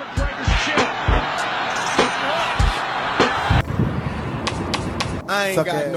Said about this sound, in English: Dude, there he goes. Slapped him again. Boom.